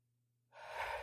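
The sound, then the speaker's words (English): After a brief quiet pause, an airy breath is drawn in slowly through the nose, a steady hissing inhale that swells and holds without any talking. “So in through the nose. Hold.”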